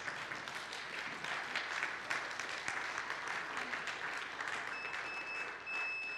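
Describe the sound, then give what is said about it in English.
An audience applauds its long-time members steadily, a dense wash of many hands clapping at an even level for several seconds with no voices on top. “You can applaud, that would be good.”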